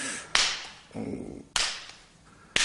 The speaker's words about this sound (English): Can I smack it? Mm-hmm. Let me smack your booty. Bend over. Let me smack your ass.